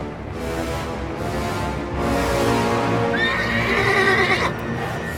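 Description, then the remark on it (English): A white horse, ridden off by its rider, gives a loud, wavering neigh that rises and trails off near the end, set against a steady, dense rumble of hoof and movement noise. No one speaks. “After the Antarctica campaign, when he rode off on his white horse?”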